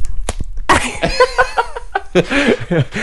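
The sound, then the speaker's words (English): A few sharp slaps on a person's skin, close to the microphone, ring out at the start, then loud laughter and chuckling from people fill the rest of the moment. “Okay, so can we slap me close to the mic?”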